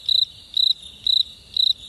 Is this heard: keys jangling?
no